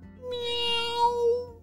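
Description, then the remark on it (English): A single drawn-out meow, voiced by a person imitating a cat, fairly loud, rising and falling in pitch over about a second and a half with no other talk. “It sounds like there's a cat here.”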